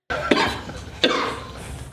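A person coughs after taking a hit of smoke, in a rough, hacking fit: three harsh bursts spaced under a second apart, fairly loud, with raspy breathing filling the gaps between them.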